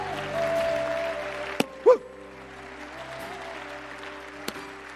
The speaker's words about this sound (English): Put your hands together and give a loud clap offering of praise to the Lord God Almighty.